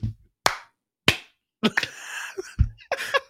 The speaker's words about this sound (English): All right, we gotta do the clap.